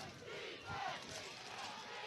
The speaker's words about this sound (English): Hear the crowd get alive again.